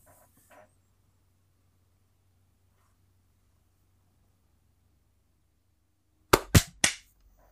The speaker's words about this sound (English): Okay. Let's do on when it says 45, do a clap. Okay.